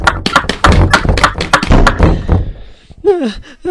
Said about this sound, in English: that door in the floor just flew open. It's probably just an animal or something.